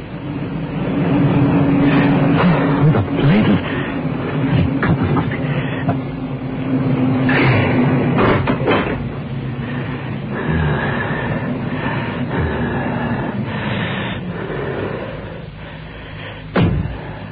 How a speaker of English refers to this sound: He was halfway down when he heard the car approach.